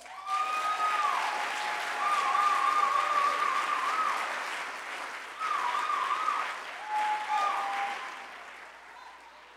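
A crowd claps warmly for several seconds, a dense, steady patter of hands with a few whoops and cheers rising above it before the applause gradually thins out.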